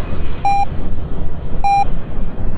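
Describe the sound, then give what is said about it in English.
Two short, clear electronic beeps, evenly pitched and spaced a little over a second apart, ring out over a steady, noisy background rumble. “You hear it go beep?”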